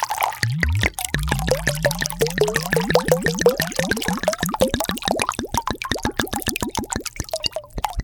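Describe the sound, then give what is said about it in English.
Wine glugs and splashes from a bottle into a glass, a rapid run of wet plops rising in pitch as the glass fills, with no voices. “If you can tell by the sound of that pour, I'm back.”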